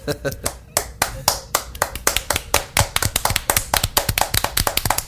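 A lively round of applause: many hands clapping in quick, dense bursts that build into a steady, energetic rhythm, close and fairly loud throughout.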